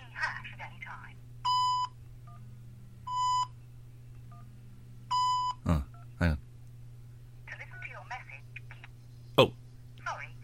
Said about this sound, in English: Please leave your message after the tone.